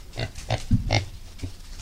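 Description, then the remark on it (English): A pair of three-month-old pigs, Thelma and Louise, grunt in a quick series of short, snorting bursts, several close together, with no talking, at Billings Farm and Museum in Woodstock, Vermont. “That's a pair of three-month-old pigs named Thelma and Louise.”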